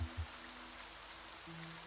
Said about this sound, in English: It is dark. No stars or moon as the clouds roll over, buffeting you with wind and rain.